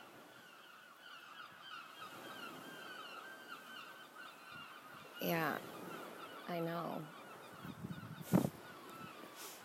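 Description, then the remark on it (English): Seagulls call out in two loud, nasal bursts over a faint backdrop of bird chatter, and a person speaks a few brief words near the end. “All right, seagulls. All right, I heard you.”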